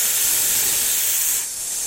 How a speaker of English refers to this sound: Do you hear their eager hisses? They yearn for you.